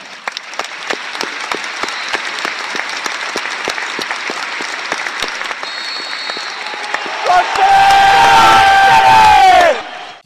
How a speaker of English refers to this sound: express our condolences and sympathies to Gary's family, and I ask all of you to stand to join the world of football by marking this sad loss with a minute's applause in memory and honour of Gary Speed.